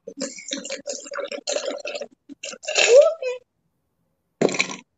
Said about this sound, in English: So we're going to start this one off with your shaker, as always, full of ice. You need about 3/4 ounce of both your rum. And so I'm just going to pour that up.